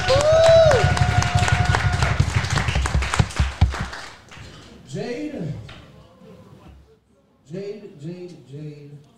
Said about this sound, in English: Make a big round of applause.